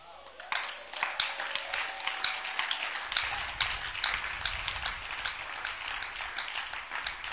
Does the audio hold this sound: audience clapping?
yes